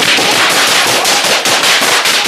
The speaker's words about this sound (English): And at that point, the gunfire begins. Sir, the horrendous gunfire begins.